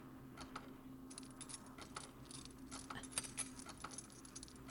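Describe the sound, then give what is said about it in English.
A bunch of keys jangles and clinks continuously, with bright metallic jingles rising and falling in quick irregular bursts over a low steady hum. “What about these keys?”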